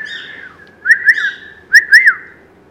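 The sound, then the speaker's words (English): A pet bird gives two shrill, rising-then-falling wolf whistles one after another, clear, with a faint breathy whistle before them and no talking. “You see, he wolf whistles, which is so funny, but he's not going to do it now.”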